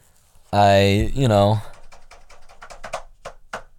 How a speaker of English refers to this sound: I'm typing around on the keyboard that's not plugged in right now.